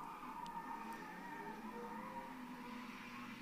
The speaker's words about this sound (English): Is that a car? Sounds like it. Sounds like a really car that's having a lot of problems. It sounds like somebody's spinning donuts in your parking lot.